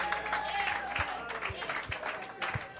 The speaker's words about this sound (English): Clap your hands, O ye people. Shout unto God with a voice of triumph.